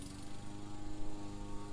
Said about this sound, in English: Get a ticket to see Lakeside Drive lit up with a groundskeeper riding a lawnmower in the distance.